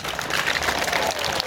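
An audience claps steadily, many hands together in a dense, continuous wash of applause that holds an even loudness throughout, with no voices over it.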